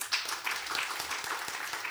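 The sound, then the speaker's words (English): An audience claps together to vote for a quiz answer, a steady, dense patter of many hands, bright and moderately loud, continuing throughout without any voices. “If you think it's the cosmonaut with the great name, clap.”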